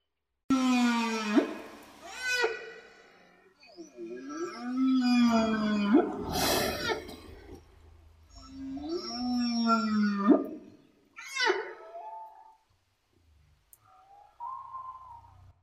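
Long, eerie song of whales in the ocean with sliding, moaning calls that rise and fall in pitch, several drawn-out phrases separated by short pauses, loud, with a faint higher call at the end.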